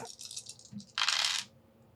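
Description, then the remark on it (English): Four dice rattle and tumble across a hard surface, a quick series of light clicks followed by a louder, denser clatter before settling into quiet. No one speaks. “That's no successes with four dice.”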